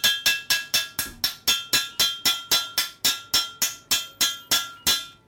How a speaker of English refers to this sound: Or 9 minutes banging a saucepan with a wooden spoon.